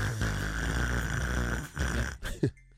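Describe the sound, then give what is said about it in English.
A person imitates the heavy, wheezing breathing of an overweight person, a loud raspy, snore-like rush of air that runs for about two seconds before cutting off abruptly. “Don't have the breathing of an overweight.”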